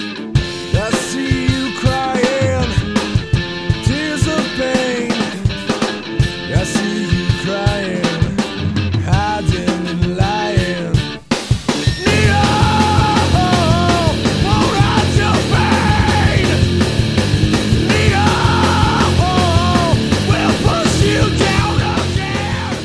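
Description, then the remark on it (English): Loud, dense rock song with harshly screamed vocals over distorted guitars and pounding drums; the guitar cuts out briefly near the middle with a bass effect, then the mix surges back even fuller and heavier. “the bass drum vocals all come in, and it just kind of cranks up to full volume pretty quickly, you know,”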